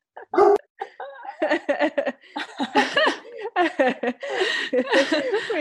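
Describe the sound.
Dogs bark in a rapid, yappy series of sharp bursts, with short pauses between them and some human voices mixed in, as their owner goes to quiet them down.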